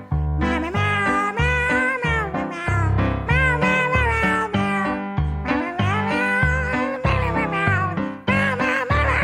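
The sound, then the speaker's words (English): A loud cat meows over and over in a nearly continuous run, each call bending up and down in pitch, layered over a steady low backing sound. “Oh, look, Beatrice is here. Meow. Oh, you want to sing a song, Beatrice?”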